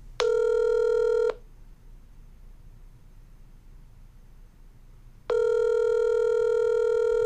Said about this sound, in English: That is a dial tone. You have not heard that dial tone on this podcast before, because typically I do this in other formats.